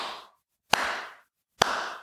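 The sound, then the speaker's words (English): Slow, half-hearted clapping: single sharp claps spaced almost a second apart, each a crisp smack trailing off into a lingering decay, with silence between and no voices. “They were clapping? It was, but like that.”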